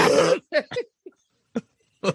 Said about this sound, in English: No, that's our burping. Remember?